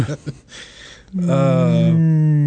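A sci-fi tractor beam powering down: after a few brief crackling bursts, a loud, low buzzing drone rich in overtones sets in, dips slightly in pitch, then holds steady.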